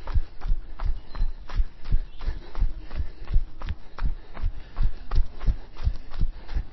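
Horses' hooves thud along a soft trail in a steady, repeating rhythm, moderately loud, in sunshine, with faint background noise and no talking.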